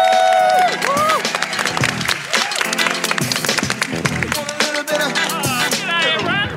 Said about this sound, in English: To wrap up this special edition of Climate Week, please, big round of applause for Bridie and Wyatt.